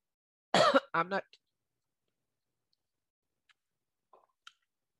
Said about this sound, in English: I better take some water.